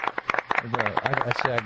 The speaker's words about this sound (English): I got one person clapping there.